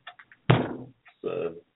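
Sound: knocking on a door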